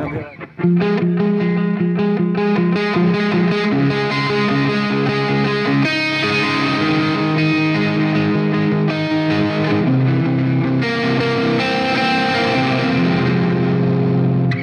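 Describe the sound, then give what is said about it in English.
An electric guitar plays dreamy, ringing chords drenched in reverb, the notes smearing and repeating like layered delays; the reverb is set up so it almost sounds like two delays, more spaced than a slapback. It's loud and continuous for about fifteen seconds, with no one talking. “The way that you have that reverb set up and structured, it almost sounds like two delays.”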